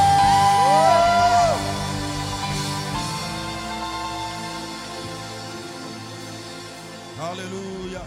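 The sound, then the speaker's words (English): A church audience at The Overflow Worship Center shouts, whoops and claps together for the Lord in a loud, dense roar. It peaks in the first second or so, then holds steady, with another rising cry near the end. “Give the Lord a shout and a clap.”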